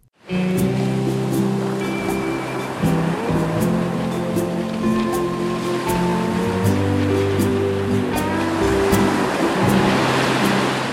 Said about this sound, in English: Picture this: sun, surf, and crashing waves with humpback whales breaching in the distance. It might be deep winter here in Canada, but around the tropical paradise of Hawaii, it's humpback whale breeding season.